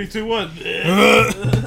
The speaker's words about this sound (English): Whoa. Wow. Instead of a clap sync, have a burp sync.